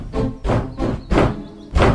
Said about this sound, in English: Early next morning, that mouldy old measle from next door was hammering on the door.